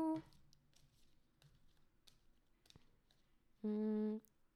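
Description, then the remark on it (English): Oracle cards being shuffled, a soft run of scattered flicks, taps and papery rustles, with a short hummed vocal sound at the start and again near the end. “I'm just going to shuffle.”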